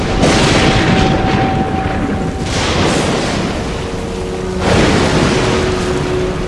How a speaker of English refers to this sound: Suddenly, a furious storm came up on the lake, so that the waves swept over the boat.